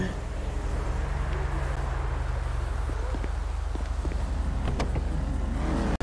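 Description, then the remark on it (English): A car engine in a video game drones steadily and loudly throughout, a low continuous hum of driving in traffic, with a few sharp clicks and taps scattered over it and an abrupt cut at the end. “And it spawned me in the wrong way in traffic.”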